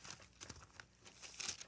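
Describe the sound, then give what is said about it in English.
Thin Bible pages rustle and crinkle as several are flipped in quick succession to 1 Thessalonians chapter 1, with soft crisp brushes and a brighter swish near the end, no voices. “In 1 Thessalonians chapter 1, you hear my pages turning.”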